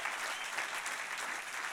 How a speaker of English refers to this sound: Somebody clap those hands in here tonight.